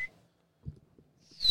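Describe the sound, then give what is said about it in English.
A person whistles through their teeth: a short, shrill whistle rises sharply at the very end, with a brief high whistle note at the start and a few soft low thumps in between. “That's like a mild whistle.”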